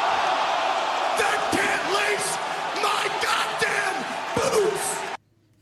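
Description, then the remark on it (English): A large wrestling crowd cheers loudly during a promo in a continuous roar, with whoops and scattered yells rising over it, before the noise cuts off abruptly near the end. “I'm love the crowd loved that one.”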